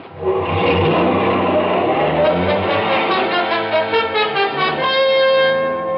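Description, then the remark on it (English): A car engine roars loudly and steadily, its pitch climbing as the car accelerates hard and speeds away out of a parking lot, staying behind a line of parked cars, with no voices over it. “His friend took off, staying behind a line of parked cars until he was clear of the parking lot and far enough away so I couldn't get in a good shot.”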